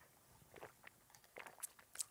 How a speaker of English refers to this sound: Let me take a sip before we just get into prayer.